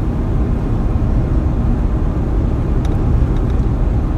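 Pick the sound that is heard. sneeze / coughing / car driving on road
car driving on road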